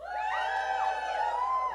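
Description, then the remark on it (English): A few people imitate a cheering crowd with their voices, giving sustained, wavering high whoops and yells that rise and fall together in one steady, fairly loud burst under two seconds long. “Best impression of cheering.”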